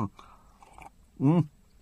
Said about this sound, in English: Let me just have a quick slurp of my...